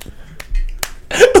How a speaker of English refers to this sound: Clap. Clap, please. Yay. Please clap.